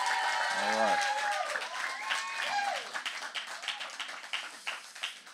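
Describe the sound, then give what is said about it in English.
Graduates at a graduation ceremony break into sustained, dense clapping and cheering for the family members and supporters who came alongside them, a loud wash of applause with some whistles and shouts mixed in, gradually thinning into scattered claps toward the end. “Graduates, this will probably be the only time while I ask you to clap, celebrate those who have come alongside you to make it to this point.”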